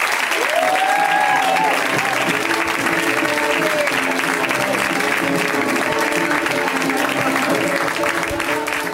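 Steady, loud applause from a comedy show audience welcoming a first-time comedian fills the whole stretch, a dense wash of clapping with a few whoops and cheers rising briefly near the start.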